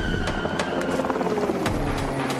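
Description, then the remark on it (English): A helicopter following a car roars loudly overhead as it flies over the car, its steady engine rumble punctuated by a rapid, rhythmic chopping of rotor blades. No one speaks. “The helicopter flew over us.”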